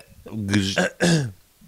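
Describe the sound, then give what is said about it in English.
A person coughs or clears their throat twice in quick succession, fairly loud, with rough, voiced bursts and a brief pause between them. “I keep coughing my earphones right out of my ears.”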